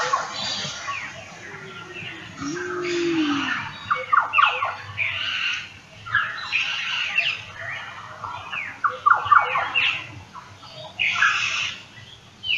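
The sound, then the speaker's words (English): A busy dawn-style bird chorus in which a black butcherbird's liquid, fluting notes weave through the sharper, squeaky calls of figbirds. Many calls overlap continuously, some clear, others fainter. “So there's black butcher bird, which is that kind of liquid, that guy just there. Wow. And there's a fig bird as well.”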